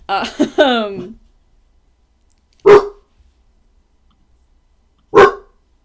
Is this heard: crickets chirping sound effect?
no